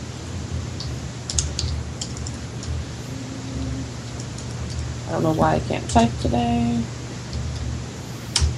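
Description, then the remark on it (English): Scattered bursts of computer keyboard typing, quick irregular clacks, with a brief stretch of voice partway through and a low steady hum underneath. “I don't know why I can't type today.”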